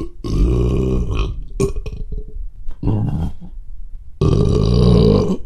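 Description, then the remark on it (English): A creature call that sounds just like a grown man burping: four loud, close, guttural belches, one very short, separated by brief pauses, with no talking. “I found this recording of what a Hodag apparently sounds like, and it makes me laugh because it sounds like a adult man burping.”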